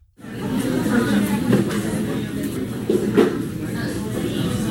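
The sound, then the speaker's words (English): Coffee shop ambience preset from a background-noise website: a steady, moderately loud wash of indistinct background chatter and hiss, with a few faint clinks and knocks rising briefly out of the murmur. “Or coffee shop.”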